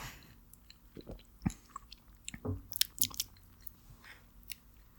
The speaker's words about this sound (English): Now, we'll take a sip.